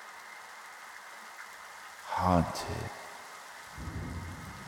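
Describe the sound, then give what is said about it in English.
Steady crackling static hisses through a set of headphones throughout, and partway through a lone voice whispers the word "haunted" over it before the static carries on at a lower, rougher level. “And you hear a voice through the crackling static say, haunted.”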